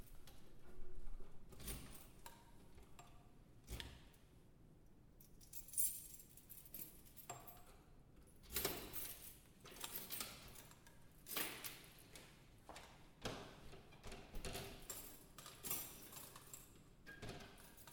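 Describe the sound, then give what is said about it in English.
Keys jangle and clink in short bursts, followed by metallic clicks and rattles of a lock being worked as a door in a gallery is unlocked, with faint room noise between. “I have the keys too. I didn't realize I had a key.”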